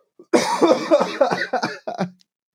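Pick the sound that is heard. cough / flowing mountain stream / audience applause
cough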